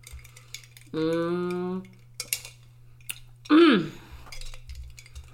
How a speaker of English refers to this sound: Listen, let me take a sip.